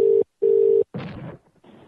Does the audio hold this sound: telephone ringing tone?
yes